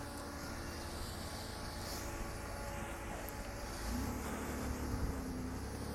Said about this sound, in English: Oh, another car.